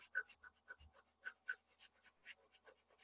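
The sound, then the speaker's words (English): Rapid, forceful belly breathing as a breathing exercise, the belly forced out with each breath, pumping in and out in a quick steady rhythm, about five or six huffs per second, breathy like panting, with no talking. “So belly breathing is you're very rapidly forcing your belly out. It's a very quick breath, but it's a...”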